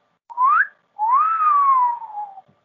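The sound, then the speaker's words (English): A loud, clear wolf whistle by the character Cappy, leaning over a ship's railing: a short upward-sweeping note, a brief gap, then a longer tone that rises and slowly glides downward. Alone, with no talking. “Now, I characterized his whistle as a wolf whistle.”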